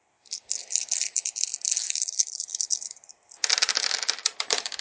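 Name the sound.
dice rattling and rolling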